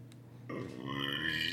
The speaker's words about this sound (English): Hey, a real burp. Wow, you're a man.